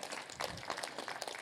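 A church audience applauds last week's preachers, many hands clapping together in a dense, steady patter of crisp claps that stays fairly soft throughout, with no talking over it.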